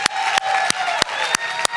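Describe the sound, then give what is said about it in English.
A church audience applauds steadily to rejoice over salvations, a dense crackle of many hands with sharp, evenly spaced accents about three times a second, like clapping falling into a beat. No one speaks. “Listen, I want you to put your hands together for these salvations.”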